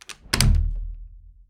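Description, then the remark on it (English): A door sound effect of a door opening: a couple of quick latch clicks, then a single heavy, booming thunk whose low rumble fades over about a second. It is fairly loud, with no voices. “Now the door opens.”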